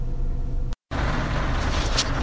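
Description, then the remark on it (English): Rain falls outside a window as a steady, even hiss with a low rumbling undertone, broken by a brief moment of silence partway through. No one speaks. “Can you hear the rain outside? It's raining now.”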